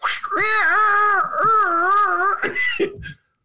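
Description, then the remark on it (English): A human voice imitates a yowling cat with a long, wavering, drawn-out wail that bends up and down in pitch, ending in a few short, breathy catches before falling silent. “Here's my cat out of the bag.”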